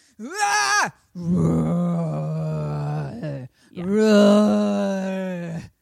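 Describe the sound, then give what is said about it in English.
A voice imitates a fire-breathing dragon's roar in three loud, drawn-out growling bursts: a short first one, a long strained middle roar, and a final swelling one, with no other sounds. “I'm a fire-breathing dragon.”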